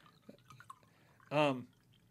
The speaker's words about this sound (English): So now, hold on as I spilled my water.